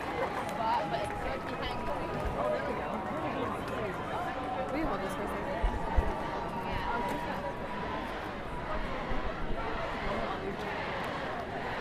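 A large crowd at a stage event roars and chants the name Greta together in a steady, dense wall of voices that stays loud and unbroken throughout, with no single speaker standing out.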